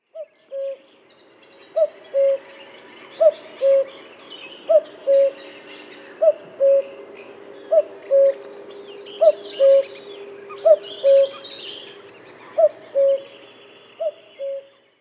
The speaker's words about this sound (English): The name cuckoo is onomatopoeic, which means it's taken from the bird's call. For thousands of years, the loud ringing cuckoo call of the cuckoo has heralded the arrival of the spring. This wandering voice is a source of many myths.